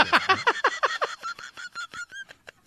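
A loud, harsh beeping repeats rapidly, about a dozen honk-like pulses in quick succession. It starts buzzy and rich, then thins into higher, cleaner tones. No voices.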